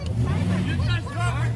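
A pickup truck's engine rumbles steadily as the driver slowly backs it up, while a crowd of people chatters in the background.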